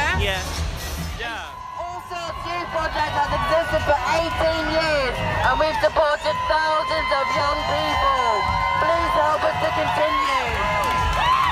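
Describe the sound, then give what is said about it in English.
A large crowd cheers, shouts and waves continuously, with overlapping high whoops and excited voices forming a loud, steady roar throughout. “Everyone's cheering lots, waving lots.”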